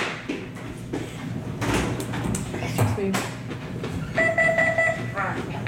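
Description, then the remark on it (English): A front door opens against a steady, noisy background rumble, and a short, bright electronic chime rings out near the end. “Front door. Front door's open.”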